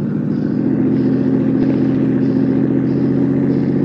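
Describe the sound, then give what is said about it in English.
A car engine roars steadily at high revs during a chase, a loud, sustained mid-range drone with a faint rattling clatter and no letup, as the car, its lights switched off, gains on a car ahead. “The car ahead lost some of its crazy fear. You're gaining.”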